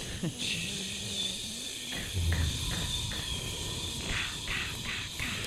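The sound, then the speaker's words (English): Voices imitate static, making a steady, breathy hiss that runs unbroken for several seconds, with a few brief pulses and bumps in the noise. “We should all just make static noise for the rest of the show.”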